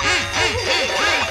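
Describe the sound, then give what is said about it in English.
A voice imitates a duck, giving four quick, nasal quacks in a steady rhythm, fairly loud with no other sounds around it. “Quack, quack. Quack, quack. Hello, I'm a little duck.”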